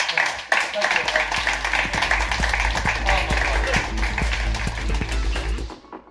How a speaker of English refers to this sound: Ladies and gentlemen, give him a massive round of applause.